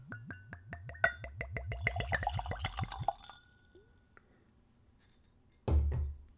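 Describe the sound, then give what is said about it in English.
Apple brandy glugs steadily from a bottle into a clean Glencairn whiskey glass for about three seconds, the rhythmic gurgles rising in pitch as it fills, then a brief quiet and a solid clunk of the bottle being set down. “So I've got a clean Glencairn. And we'll do a pour.”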